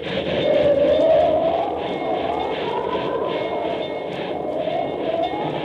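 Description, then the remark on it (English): A train rumbles steadily along railway tracks, a continuous loud roar with rhythmic clatter from the wheels and a faint whining tone riding over it, with no voices. “Precisely speaking, in the Wasatch Mountains, advancing by train toward the perilous pass at Medicine Bow.”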